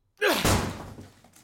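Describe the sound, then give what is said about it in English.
A door being kicked down: two heavy thuds in quick succession, the second one a loud booming crash that rattles and fades out over about a second. No voices. “I'm kicking this fucking door down, pal.”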